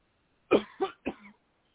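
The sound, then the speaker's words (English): Three deep, forceful coughs from the gut after a deep breath, in quick succession and fairly loud, during a prayer session, the last one trailing off into a rougher, throaty rasp, with quiet surroundings and no speech. “Now the Lord says for you to take a deep breath and cough from your gut.”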